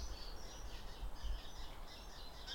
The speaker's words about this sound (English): I can see a starling, and there's a nice wood pigeon. So we've got a lot of birds on the edge of Abergavenny. That high whistle is a starling.